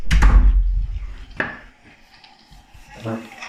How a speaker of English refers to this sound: Would someone close the door there, please?